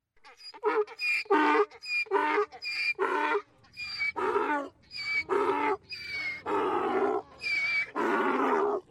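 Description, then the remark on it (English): A donkey braying sound effect, played for a 'donkey of the day' segment, brays loudly for about nine seconds, a long run of harsh, rasping hee-haw bursts that alternate between a high wheeze and a lower honk, with no talking. “It's time for the much missed and much beloved donkey of the day.”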